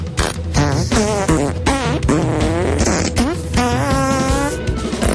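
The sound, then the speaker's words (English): A rapid string of loud, buzzy fart noises plays the William Tell Overture, the pitched blasts rising and falling in quick galloping rhythmic bursts with no pauses. “Now, for your listening pleasure, Luke Heggie presents Classical Farting. Here's the William Tell Overture.”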